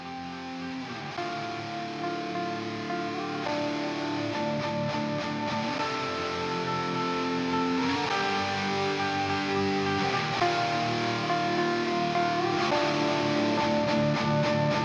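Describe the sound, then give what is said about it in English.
A sustained, distorted guitar-like tone from a modular synth patch drifts through shifting harmonic chords, with distortion from a Sonocurrent MT2D, lush reverb from a Desmodus, and gently wobbling modulation from an envelope follower modulating the LFO, playing steadily and fairly loud with no voices. “So I hope you enjoyed this just kind of experimentation patch using an envelope follower to modulate the LFO that's controlling everything, and, you know, some distortion from the Sonocurrent MT2D, and some nice reverb from the Desmodus.”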